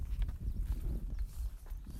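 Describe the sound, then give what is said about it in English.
A small Arabian mare walks along with a steady clip-clop of hooves, soft, muffled thuds in an even rhythm, while ridden to herd cows, with low rumbling background and no talking. “She's a little Arabian mare that I got.”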